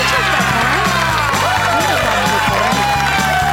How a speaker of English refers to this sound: Shut those people up. I'm tired of those applause. They love you. They love you.